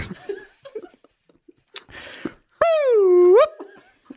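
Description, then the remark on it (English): A dog whimpers once after being kicked, a loud, drawn-out whine that dips in pitch and then rises before cutting off, preceded by soft breathy rustling and scattered faint murmurs. “Well, because you've been shooting a gun into the air and kicking a dog.”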